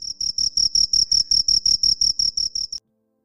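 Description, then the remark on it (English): A cricket chirps in a steady, rapid series of about fourteen evenly spaced, shrill pulses, clear with no other sounds, then stops abruptly into silence. “Why do Crickets Chrip all Night?”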